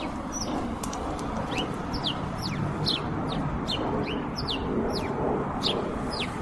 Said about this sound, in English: Hey, birds.